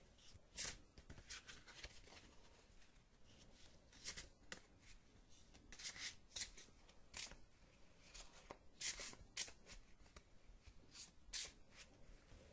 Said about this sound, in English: The next step that I do is I begin to shuffle the cards.